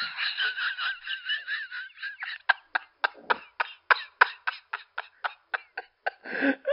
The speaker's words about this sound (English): oh, Barry, that's a duck.